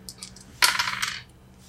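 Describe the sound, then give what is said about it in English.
A few light taps, then dice clatter across a hard tabletop in a short, bright rattle lasting about half a second, fairly loud, before settling into quiet. No one speaks. “I have dice!”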